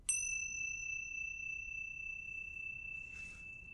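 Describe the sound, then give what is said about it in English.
A bell is struck once, and its clear metallic tone rings on steadily for several seconds, slowly fading, with no one speaking. “So all you need is bells like these. And then what you do is you go round sounding the bells.”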